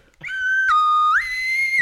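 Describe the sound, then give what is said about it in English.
A slide whistle toots a sustained tone, dips abruptly lower, then glides back up to a higher held note, loud with no talking over it. “slide whistle in the morning. Good slide whistle to you.”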